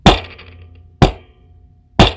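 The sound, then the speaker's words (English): A gavel, banged by the show's executive producer and board operator, bangs three times, evenly spaced about a second apart, each strike a loud, sharp crack followed by a brief ringing decay. No one speaks. “now he's going to bang the gavel once again.”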